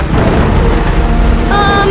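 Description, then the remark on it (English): A loud, steady roar of heavy rain and deep rumbling thunder from a storm that comes up suddenly, with a brief high, wavering tone rising over the storm near the end. “Is it me, or did that storm just come out from nowhere?”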